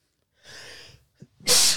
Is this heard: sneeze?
yes